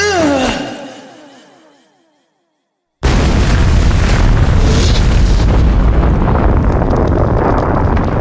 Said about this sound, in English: The entire temple finally collapsed, crashing down upon itself and sending a spectacular plume of dust and rubble shooting forth from the sinkhole and over 2,000 feet into the African sky. The roar in the jungle surrounding the sinkhole was deafening